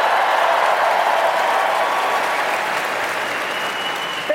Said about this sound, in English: Well, I will tell you, they're overcast, but I'm about to get a bigger applause because I'm actually from, born and raised, the Tanglewood adjacent town of Pittsfield, Massachusetts.